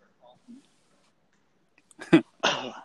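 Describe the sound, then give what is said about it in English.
Two harsh bursts of coughing and throat clearing, one right after the other, following a couple of soft, faint sounds in an otherwise quiet moment. “I'm going to start coughing and pretend like I'm not pissing my pants right now.”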